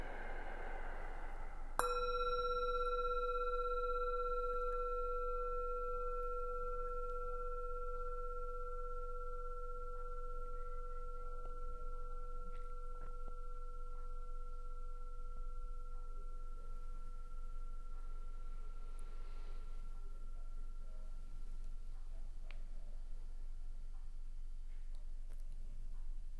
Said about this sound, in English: And as the bell, the sound slowly fades, let's take our awareness, that broad, expansive awareness, to our whole self.